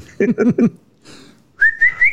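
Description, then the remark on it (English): Someone whistles to call a dog: three quick, clipped notes, a brief pause with a soft breathy sound, then a longer, steady whistle that slides gradually upward in pitch. “He puts on a catcher's glove and just starts whistling.”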